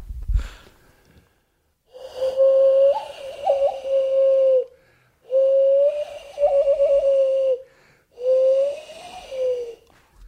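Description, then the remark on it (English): A person whistles a bird-like call in three breathy, wavering bursts with short gaps, fairly loud, mimicking a bald eagle's high chittering cry. “And my third whistle? Hands. Bald eagle. Bald eagle.”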